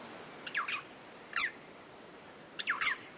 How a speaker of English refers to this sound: And standing out proud in the shine of their jet black plumage are our coastal crows, the chough.